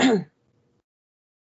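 human body sound, suppressed cough

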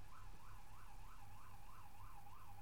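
vehicle, ambulance siren

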